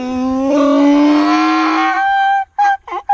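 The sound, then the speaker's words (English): A loud donkey bray: one long, drawn-out wavering call that swells and fades, followed by several short, choppy honking bursts, with no voices. “Is anybody coming back to get this donkey?”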